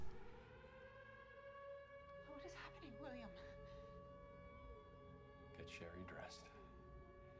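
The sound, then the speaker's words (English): An air raid siren holds a steady, droning wail through the whole stretch, loud and constant, while voices break in briefly over it twice. “She should know that the air ride siren means that everything's gone to shit.”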